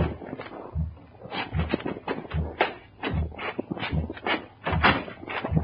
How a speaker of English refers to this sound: Then, emotionally exhausted, I went back to my hotel and slept. It was noon when I was awakened by a knock on the door.